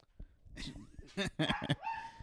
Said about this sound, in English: It's my guard dog, Mary. You better beware. Smallest chihuahua in the world.